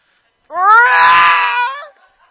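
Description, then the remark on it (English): A single loud, drawn-out scream from one person into a pillow, rising in pitch at the start and holding strong for over a second before cutting off abruptly. There is no talking around it. “Make me scream in a pillow.”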